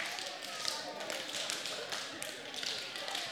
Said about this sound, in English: Turn around and give like two or three people a high five real quick. High five, slap hands.